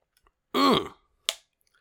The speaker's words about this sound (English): But I got my coffee here. Sipping.